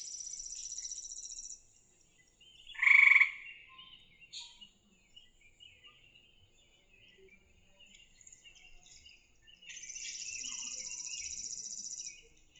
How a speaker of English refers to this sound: So what was that? That was a tree frog.